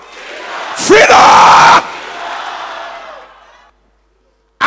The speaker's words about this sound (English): Can you clap and shout freedom?